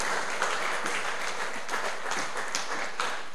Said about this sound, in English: These guys are our elders. Yeah, give them a clap.